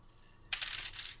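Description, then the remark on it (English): Two dice clatter and rattle across a hard tabletop in a quick burst of small clicking impacts lasting under a second, moderately quiet, with no talking; they are rolled for a dexterity roll in a game, giving a straight six with no doubles. “Your dex on two dice.”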